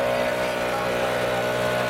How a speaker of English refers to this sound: A leaf blower whirs at a downtown Reno park. It's the middle of spring, and a group of people are working.